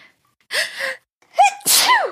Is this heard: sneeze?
yes